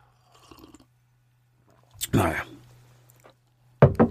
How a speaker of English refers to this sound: Obligatory one sip of coffee.